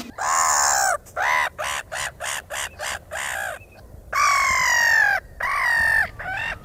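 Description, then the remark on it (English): Harsh, raspy black-headed gull calls sound loud: a long screech, then a quick run of short clipped cries, followed by two more drawn-out squawks and a brief final call. “Tweet of the Week this week is the black-headed gull”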